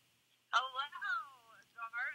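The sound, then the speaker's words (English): A voice comes through a phone speaker, thin and tinny, in a couple of short phrases after a brief moment of quiet, sounding narrow. It is a phone call from Britt Baker, put on speaker and held up to the microphone during a broadcast. “Because I'm getting a phone call from Britt Baker.”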